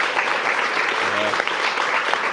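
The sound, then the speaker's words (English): A masked crowd applauds steadily for a couple of seconds at the announcement of a national freeze on handgun ownership in Canada, a dense, even wash of many hands clapping at once, with a brief faint voice rising under it partway through. “All the people clapping is the scary part.”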